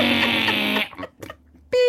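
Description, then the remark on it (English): A steady electronic tone cuts in near the end and holds, loud and unbroken like a heart monitor's flatline beep, after a burst of dense buzzing sound and a brief lull. “Beep. Get the paddles out.”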